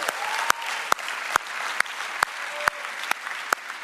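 An audience applauds in a dense, steady wash of clapping, with sharp louder claps cracking through at a regular beat about twice a second, cheering the launch of Mosaic South Pasadena and Mosaic Venice. No one speaks.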